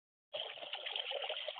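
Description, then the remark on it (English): Trickling water starts abruptly after a brief silence and runs steadily with an even, bubbly hiss, moderately loud, with no voices. “And what's the water reference?”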